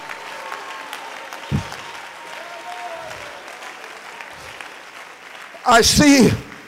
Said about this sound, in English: Oh, somebody clap their hands right now.